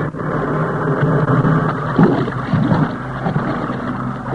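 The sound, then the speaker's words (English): A raft is paddled toward shore through rough, icy surf about 200 yards out: a steady roar of churning water, with heavier splashes and surges breaking over the sides about halfway. No voices. “As we paddled toward shore, the icy water broke over the sides and froze on our faces.”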